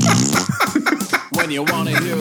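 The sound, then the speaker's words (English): A voice blows a loud, drawn-out mouth fart noise with wobbling pitch after a joke fell flat, tangled with snickering laughter for about two seconds. “I promise I wasn't going to make that fart noise anywhere, but the joke didn't land like I wanted, so I went.”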